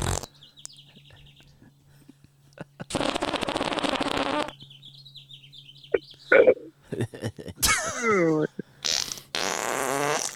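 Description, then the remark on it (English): A loud, drawn-out fart rips through the middle, followed by shorter sputtering bursts, with scattered chirpy, whistling noises and brief voices around it. “He just farted too.”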